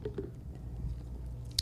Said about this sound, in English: Excuse me, I'm going to have a drink. When I drink, you drink. just like that.